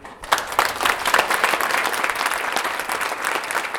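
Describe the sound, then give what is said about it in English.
Sustained applause from a crowd at a Board of Regents meeting after a speech, many hands clapping in a dense, steady patter that starts abruptly and holds at a fairly loud level throughout. “He finishes his speech to applause.”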